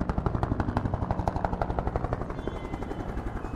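A black helicopter passes overhead, its rotor blades thumping in a rapid, steady chop that stays loud before easing slightly as it moves off. No one speaks.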